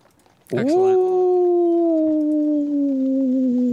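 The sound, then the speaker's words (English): A voice imitates a long, wavering howl in the woods that starts abruptly, holds for about three seconds and slowly sinks in pitch. It is loud, with no other sounds around it. “It's a howling in the woods.”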